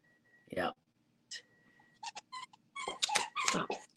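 A dog whimpers in a series of thin, high-pitched whines, a few brief cries at first, then a longer run of wavering whimpers toward the end.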